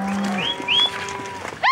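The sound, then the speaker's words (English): Cattle low in drawn-out moos amid a busy outdoor herd on a cattle drive, with a few short rising whistles cutting through and a sharp burst of noise at the very end. “read brands or ear tags and call out which cows belong to which ranch.”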